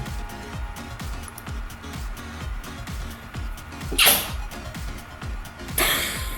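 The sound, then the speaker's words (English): A sudden, sharp sneeze bursts out, followed moments later by another loud breathy burst, both over a quiet backing track with a steady low beat. “Sorry, I sneezed.”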